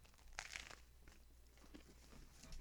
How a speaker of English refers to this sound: Hold on, I'm taking one more bite before I'm like chewing all in your ear. Sorry, guys.